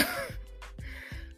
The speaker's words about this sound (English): And I promise I'm not sick, y'all. I promise. But I hate that I keep sniffing.